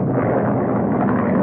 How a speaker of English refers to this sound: His tiny single-engine plane is being buffeted without mercy by a ferocious thunderstorm.